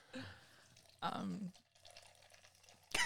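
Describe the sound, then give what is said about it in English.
A drink pours into a glass in a steady trickle lasting a couple of seconds, with short bursts of voices before it and a sharp noise at the end. “Yeah, it sounds like wee.”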